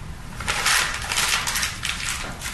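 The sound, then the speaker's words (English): Paper he had been reading from being wadded up, a dry crackling crinkle in irregular bursts that swells and fades over about two seconds, with no voices. “And he wads up the paper that he was reading off of.”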